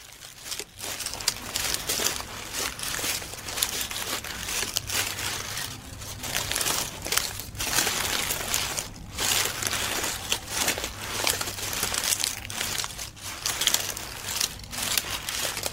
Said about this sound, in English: but I did also do some kind of wombat movement sounds with a bunch of leaves, and just because they had a slightly different feel to footsteps, I just kind of used my hands and a canvas bag and some leaves to get the kind of movement of a wombat.